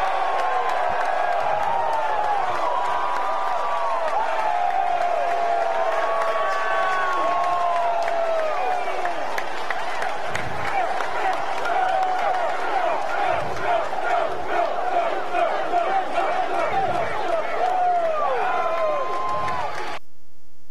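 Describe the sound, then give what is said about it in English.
A large golf gallery crowd roars and chants as Phil Mickelson wins a tournament, many overlapping voices shouting in a rhythmic, repeated cadence, with scattered whoops and claps, loud throughout. “we played that back earlier for Kevin, and he thought they were yelling suit, suit, suit”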